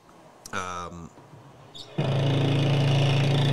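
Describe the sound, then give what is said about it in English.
Construction machinery kicks in partway through, a loud, steady engine drone with a low throbbing hum that holds to the end, following a brief voice-like tone and quieter background. “You all hear the construction back there?”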